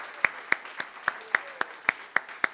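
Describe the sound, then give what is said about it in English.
A church audience at the Morristown campus clapping in a steady, even rhythm to cheer the church's other campuses: about ten sharp, evenly spaced claps over a faint background murmur, with no distinct cheering standing out. “And can we just take a moment to give a big cheer to our other three ballparks, campuses, Nutley, Mountainside, and New Brunswick.”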